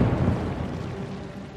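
A distant explosion-like boom from a rock fall at the old mine, heard at Cannonball Curve, rolls out as a deep, rumbling boom, heavy in the low end and slowly fading over about a second and a half, with no voices.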